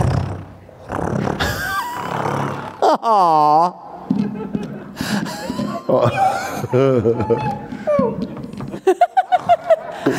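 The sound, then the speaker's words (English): A person vocally imitates a cat scratching an iPad and purring, making growly, wavering voiced noises with a rising and falling meow-like call, then ending in a short burst of rhythmic, pulsing purr sounds. “Just scratching the iPad and purring.”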